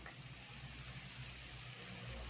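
rain

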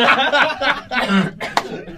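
cough

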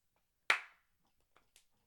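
hands clapping

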